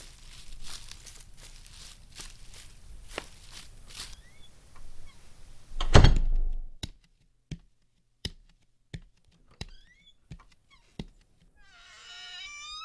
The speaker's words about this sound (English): Whoa, door in the floor. Neat.